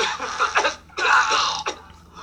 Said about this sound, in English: I've never seen anybody do that motion with their legs when they fart. Ew, that don't sound good.